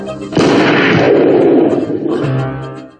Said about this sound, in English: So that gunshot at the end was Vet Dad shooting Jesse.